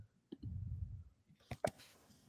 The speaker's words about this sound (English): Sorry, I'm typing it right now. Let's see.